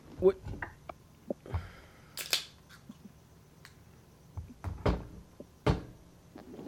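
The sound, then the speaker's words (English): A chair creaks and clacks as the person sitting in it shifts their weight, giving an irregular series of sharp clicks, knocks and short creaks spread over several seconds, with faint murmuring underneath. “It's like me shifting my weight in my chair and making all types of sound.”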